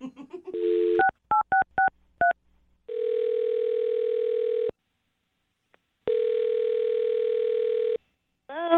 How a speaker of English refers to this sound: I'm gonna dial her phone number right now, man. Here we go.